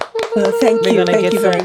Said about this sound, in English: We need to have the... Yes. The clapping.